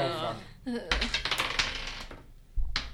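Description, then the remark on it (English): Dice clatter across a tabletop as players roll a luck check in a game, a quick burst of small hard taps and rattles lasting a second or two, with a brief voice sound just before. “Everybody roll a luck check.”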